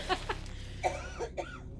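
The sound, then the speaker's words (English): A person coughs in a handful of short, harsh bursts, two quick ones, a pause, then a few more spaced irregularly, with no talking. “If I keep coughing, I'm going to piss.”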